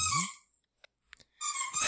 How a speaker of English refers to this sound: Welcome back. The return of the toy. Yes, that is your squeaky toy. Does she have any non-squeaky toys? She has an entire bucket full of toys, only one of which squeaks